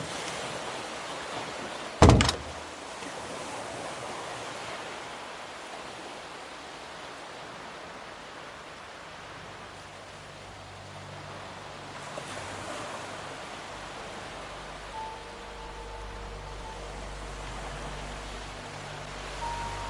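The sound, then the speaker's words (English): Steady ocean waves wash in a continuous, soothing hiss of surf, like a sleep sound machine, with a sharp click near the start and a low hum joining later; no one speaks. “The Sound Machine”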